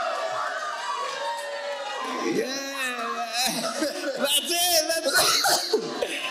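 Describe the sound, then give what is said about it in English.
A roomful of people at Centro Familiar de Fe greeting one another at once after being told to say hi to people like the world does, overlapping voices chattering and calling out with bits of laughter, a lively crowd murmur that swells louder toward the end. “All right, so first you're going to say hi to people like the world does.”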